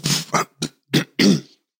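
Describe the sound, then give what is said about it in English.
A loud bout of throat clearing: a quick series of five rough, gravelly bursts, the last one longer and more drawn out, with no talking. “I had to clear my throat anyway.”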